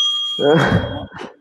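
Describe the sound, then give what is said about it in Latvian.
A small bell rings with a steady, high-pitched tone that lingers for about a second, partly covered by a louder, dull thumping burst before fading out. “Tie, kas nesaprat, tas ir zvaniņš.”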